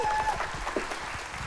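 A crowd applauds steadily, many hands clapping in a dense, even wash of sound at moderate loudness, with no voices standing out.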